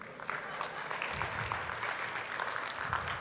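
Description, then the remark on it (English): An audience claps steadily for a few seconds, a dense, even patter of many hands at a moderate level, with faint voices mixed in underneath. “Don't let her clap alone.”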